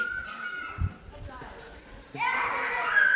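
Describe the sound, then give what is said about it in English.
Children's voices chatter and shout as they play a game and run around, with a quieter stretch before a sudden burst of loud, high-pitched excited squeals and overlapping kid talk that continues to the end. “They're playing a game now.”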